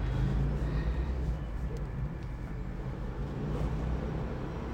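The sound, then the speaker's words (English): A quiet hybrid car rolls past in traffic with a soft, steady low rumble of tires and road noise that eases slightly as it goes by; no one speaks. “Damn, that's a quiet ass car. Thought that was a Prius.”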